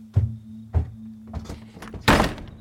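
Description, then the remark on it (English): Two heavy, evenly spaced thumps like footsteps, a few softer clatters, then a loud, broad bang of a door shutting, with a low steady hum running underneath throughout. “I liked it because it sounds military, and then the door closing behind him also sounded military to me.”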